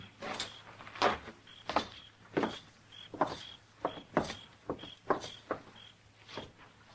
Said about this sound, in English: Come on, we'll walk right in the front door.